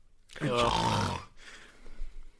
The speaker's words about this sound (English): That was me snoring, not something else then. I realised how that sounded then.